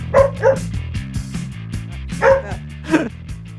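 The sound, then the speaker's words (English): A female dog barks in a handful of sharp, separate yaps, a quick pair at first and then two more after a pause, over a steady low droning background. “It's a dog strategy.”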